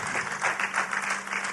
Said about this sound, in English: Well, if you got something out of that, give the Lord a hand clap, would you? Glory to God.